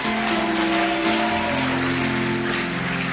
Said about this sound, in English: If you want to clap, bless the Lord.